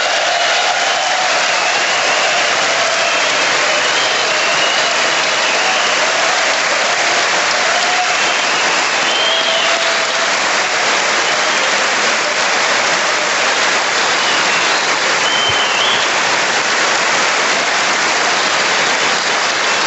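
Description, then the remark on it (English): A long, sustained round of applause from a large crowd at the State of the Union address, a dense steady roar of clapping that holds at an even, loud level for the full twenty seconds with no talking. “Lots and lots of applause breaks.”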